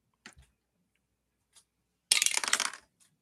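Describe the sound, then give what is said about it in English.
A couple of light clicks, then a loud burst of rapid rattling clatter as dice tumble down through a castle-shaped dice tower, lasting about half a second before settling with a final tick, landing on a six. “That's a very satisfying dice roll noise, by the way.”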